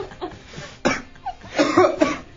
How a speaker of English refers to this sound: Why are you coughing?